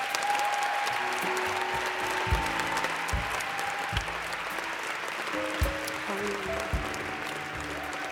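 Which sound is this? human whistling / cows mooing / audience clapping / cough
audience clapping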